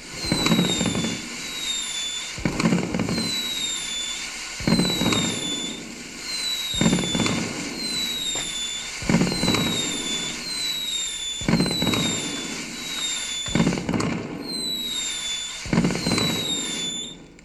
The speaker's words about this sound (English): Can we get some fireworks, please?